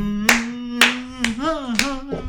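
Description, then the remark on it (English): Five sharp hand claps land at an even, steady pace, each one loud, while a voice holds a continuous sung note underneath them; the dials of a safe are turned in between the claps. “In between claps, you randomly turn the dials of the safe.”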